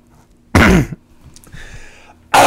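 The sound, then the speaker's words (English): A loud cough bursts out, followed by a brief quieter pause with faint breathy noise, then a second harsh cough starts right at the end. No one is talking. “You had all the time in the world to cough.”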